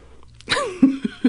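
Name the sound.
suppressed burp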